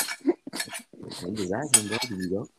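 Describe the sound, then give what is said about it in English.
Cutlery clinks against dishes in a handful of sharp, bright taps scattered irregularly through the moment, while a voice murmurs steadily underneath, like someone eating a meal. “who is eating? Let me eat.”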